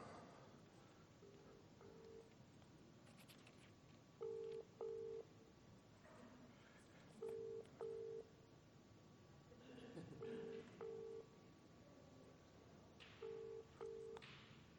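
A phone in a back pocket is accidentally placing a call, sending out pairs of short electronic tones that repeat every few seconds, slightly muffled over a soft room background.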